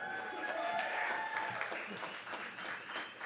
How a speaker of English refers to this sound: So round of applause for